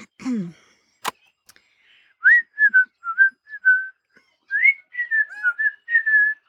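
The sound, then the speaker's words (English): Two birds whistling in two bursts of short, clear, mid-pitched notes, some rising and some falling, after a brief low squawk and a sharp click near the start. “Well, you're a couple of noisy birds, aren't you?”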